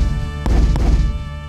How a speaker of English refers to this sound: Might as well get started now. T-shirt cannons!